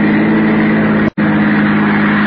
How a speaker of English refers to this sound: And I saw the headlights of a car coming down the hill.